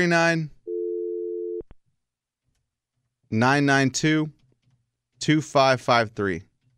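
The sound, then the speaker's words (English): A steady phone dial tone hums for about a second while a call is being placed, loud and clear, then cuts off with a click. Voices talk before and after it. “I don't even know if it picked up.”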